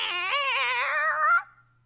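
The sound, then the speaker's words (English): A person imitates a cat in heat with one long, loud, wavering yowl lasting over a second, alone, before it cuts off into near silence. “Have you ever watched a cat yeah, in basically. Heat? You should emulate that and see if it works.”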